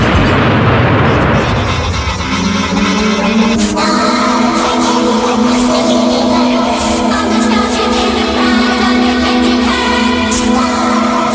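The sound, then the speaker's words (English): A loud, rumbling explosion sound effect bursts out at the start, then gives way to a steady, ringing electronic drone that holds at full volume to the end. No voices. “Oh, if I give it any more, she'll blow up.”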